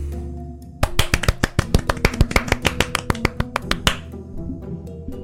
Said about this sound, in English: Did we both just applaud? Yep.